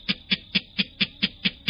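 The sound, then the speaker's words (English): A clapper rail gives a harsh, dry call of eight evenly spaced clattering notes, fairly loud, with no voices or other sounds around it. “The clapper rail.”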